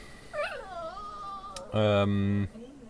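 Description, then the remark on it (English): A dog gives an excited, warbling whine that rises and falls for about a second, then a louder, steady buzzing drone cuts in briefly before stopping abruptly. “Your dog is really excited for Dark Souls 3.”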